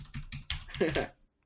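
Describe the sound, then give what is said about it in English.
A voice imitates the clacking of a Corsair mechanical gaming keyboard with a quick series of sharp clicking sounds over about a second, ending in a brief trailing burst. “I've got, you know, your standard Corsair gaming keyboard. You know, it goes clack, clack.”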